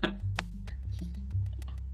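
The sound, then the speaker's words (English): Several sharp, irregular clicks of typing on a computer keyboard over a loud, steady low hum, with no one speaking. “Apparently me typing this out.”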